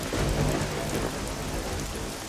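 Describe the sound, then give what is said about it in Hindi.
Heavy rain pours down steadily in a dense, continuous, loud hiss with no pauses, with no voices over it. “और तेज बारिश शुरू हो जाती है और तोतू पूरा भीग जाता है।”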